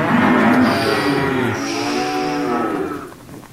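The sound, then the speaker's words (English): A cow moos loudly, one long, drawn-out bellow that shifts in pitch midway and fades off at the end, with no other sounds around it. “Try telling that to my cows.”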